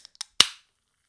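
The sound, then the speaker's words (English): A few small metallic clicks as the tab of a White Claw Surge hard seltzer can is lifted, then a sharp crack as the can pops open, followed by a brief, fading hiss of fizz. No one speaks. “Oh, you got the fizz in there too.”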